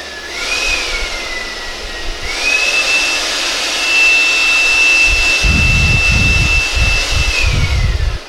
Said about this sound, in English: there is this thing, this wind machine thing. It's in the back on the shelf. Go grab it.